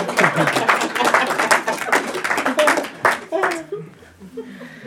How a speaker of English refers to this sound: Thank you. You can clap. Let me know I'm here.